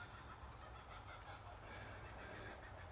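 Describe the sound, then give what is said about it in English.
Kookaburras cackle in the background before sunrise in a faint, continuous chorus of rolling laughter, sitting low with no one talking. “I don't know if you can hear the kookaburras. They're in the background laughing.”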